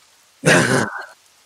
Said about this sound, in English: Yeah, you begin to hear kind of the echoes of rain outside. Little drops of water start to appear on the dirt ceiling that falls to the ground.